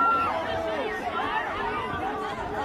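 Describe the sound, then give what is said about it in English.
A crowd of many voices at a football game yelling and exclaiming at once in reaction to apparent UFOs over the game, a steady loud babble of overlapping raised shouts with no single voice standing out, lasting the whole moment. “This is apparently UFOs over a football game, and multiple people are reacting to it. So it's getting a little loud with the yelling.”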